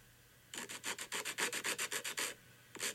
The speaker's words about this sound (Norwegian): Lyden var... En neglefil. Åh, var det så enkelt? Og neglen.